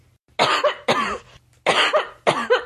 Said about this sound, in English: Actually, I think whoever's going to read this one, I'm going into the kitchen because I don't think I'm going to make it through that, coughing all over you.